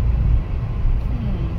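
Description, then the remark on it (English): A massive lorry with its hazards on in the middle of the road: a deep engine rumble fills the scene, steady, with a slight rising whine near the end and a muffled voice faintly underneath. “there's just a lorry in the middle of the right.”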